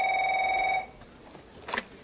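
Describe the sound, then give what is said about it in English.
In a film scene, a telephone rings as Brad Pitt's character Mills, at Morgan Freeman's desk in the detective office, receives a call from his wife: a steady, bright electronic tone that holds for under a second and then cuts off, followed by quiet room noise and a brief soft rustle. “Here's a scene where, having taken over Morgan Freeman's desk in the detective office, Brad Pitt's character Mills receives a phone call from his wife.”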